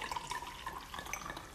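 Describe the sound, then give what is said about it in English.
Semi-sweet rosé wine is poured in a steady, bubbling trickle with small splashes and drips, a soft continuous liquid sound with no voices over it. “Here you go. I hope that sounds ASMR-y.”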